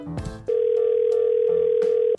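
A single ringback tone from an outgoing phone call: one steady, fairly loud electronic tone lasting under two seconds, preceded by a brief click and line noise, with no one speaking.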